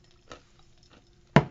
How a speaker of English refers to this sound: I'm munching on ice. And anybody who knows me knows that ice is the crack to my crack addict. I'm so obsessed with it.